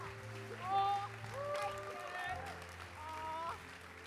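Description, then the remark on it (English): A crowd claps and cheers to welcome a speaker, a steady, sustained wash of noise with raised voices and tonal sounds running through it for about four seconds. “Come on, why don't we turn that incredible applause while you're standing?”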